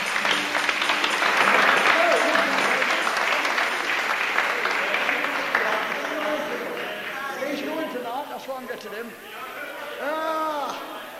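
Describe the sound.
An audience claps for Jesus together in a dense, steady burst of applause that gradually thins out, giving way to mingled voices and chatter as the clapping fades.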